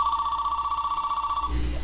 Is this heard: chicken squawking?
no